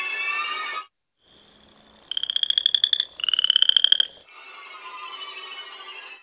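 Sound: frogs croaking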